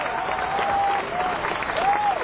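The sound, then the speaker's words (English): A large crowd at an Obama campaign rally in Oregon applauds and cheers loudly and continuously, with a dense wash of clapping and a few shrill whistles rising above the roar. “Well, it's one of those things where the crowd is actually so loud.”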